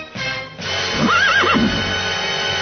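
A horse whinnies once, a rising and falling high-pitched neigh lasting about a second, heard over a steady background hiss with no talking.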